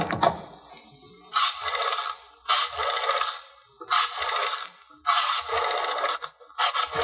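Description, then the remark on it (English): A telephone being dialed to call a woman: a series of short whirring, ratcheting bursts, each about a second long, separated by brief pauses, with no talking. “Yes, there's a phone number and address in here for someone named Lola Slade. I think I'll call her.”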